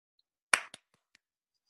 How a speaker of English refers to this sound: Why are you clapping? Because I like this jersey.